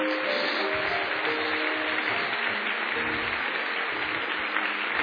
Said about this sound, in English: And when you hear us applaud, it's being backed up by millions of angels applauding just because you got up out of your seat.